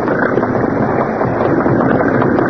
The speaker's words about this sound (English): Yes. That was another boat leaving.